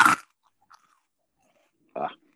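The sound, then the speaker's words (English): Two loud crunching chews, one right at the start and another about two seconds later, with faint wet mouth clicks in the quiet gap between them. “How is it making crunching noises when it's pretty consistently slurping everything?”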